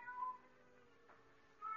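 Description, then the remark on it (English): A cat cries at night in a darkened bedroom in two drawn-out, tonal meows, one near the start and another rising at the end, fairly soft, with quiet stillness in between and no talking. “Suddenly, silence was broken by the faint crying of a cat.”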